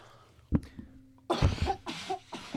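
A person coughs, one sharp cough followed after a pause by a harsh burst of several rough, rasping coughs in quick succession.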